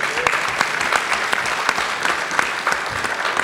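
A crowd applauds steadily, a dense wash of many hands clapping at once with scattered sharper claps standing out, fairly loud and sustained for the whole few seconds with no one speaking.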